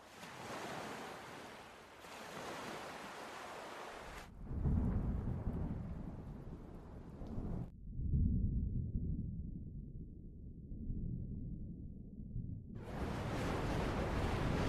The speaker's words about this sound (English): Everyone lurches backwards this time as you feel the ship's speed pick up and lunge into the storm.